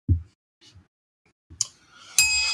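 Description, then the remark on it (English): A few soft thumps and clicks lead up to one bright bell strike near the end. Its clear metallic tones ring on and sustain steadily. No one speaks. “There's my bell.”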